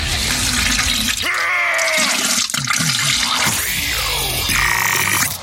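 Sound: toilet flushing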